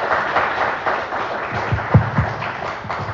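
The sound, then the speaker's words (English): A small audience applauds: a steady wash of mixed clapping for about three seconds, with a few sharper individual claps standing out near the end. “so let's give her some applause.”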